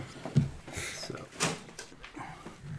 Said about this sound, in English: I guess I opened the door, shot it, and stepped back, so I guess I could be like.